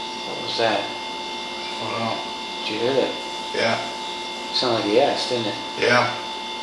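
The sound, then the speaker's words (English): A steady, continuous refrigerator hum drones through the whole recording, with several short, faint voice-like murmurs rising briefly above it. “So, and you'll hear it over top of the refrigerator.”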